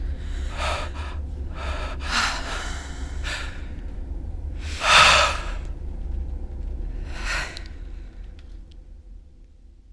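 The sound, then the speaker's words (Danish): Deep, airy exhalations from a woman and a man who have taken off their space helmets come one after another at uneven intervals, with one louder, heavier breath out near the middle. A low steady rumble runs underneath, and nobody speaks. “Så sidder de der og ånder ud ind i det uendelige, uden at rumhjelmene kommer på igen.”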